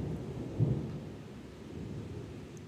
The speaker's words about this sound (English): It's like it's on cue. It's not dark outside. We're having a full-fledged thunderstorm with torrential downpours, tons of thunder, and flashes of lightning. The whole sky just flashes white, and then you can see sometimes lightning bolts.